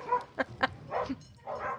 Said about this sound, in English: Oh, God. There's a big dog fight going on out here, there, guys.